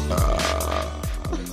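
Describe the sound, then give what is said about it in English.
A steady, droning musical tone from a remix plays throughout while three low, rumbling burps and farts added over the top break in, one near the start and two close together toward the end. “So all you did in your remix was you put farts and burps over the top.”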